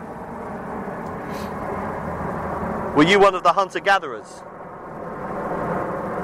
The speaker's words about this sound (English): Noisy aeroplane overhead.